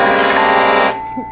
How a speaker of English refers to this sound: So oh, first, the horn of the truck, yes.